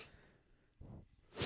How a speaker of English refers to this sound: You can't just sniff at me. You got to help me here.